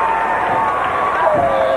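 A capacity arena crowd at the Nutter Center cheers an ovation for wrestler Max Moon as he is tagged in during a match, in a loud, sustained roar that stays steady and dense for the whole moment, enveloping, filling the arena.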